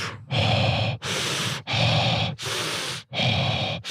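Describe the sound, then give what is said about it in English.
Loud heavy breathing in five long, raspy pulses, each a drawn-out breath with brief gaps between, a voice deliberately imitating a creepy prank caller's panting. “you could like look up their phone number and start calling them and start breathing heavily.”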